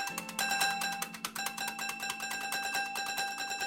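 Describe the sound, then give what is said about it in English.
A piano's hammer strikes notes in a fast, steady repeating rhythm, giving bright, ringing, bell-like tones that sustain and overlap. Some strikes land softer than others. No voices. “We really liked the way that the hammer didn't always strike the note whilst playing this very consistent rhythm.”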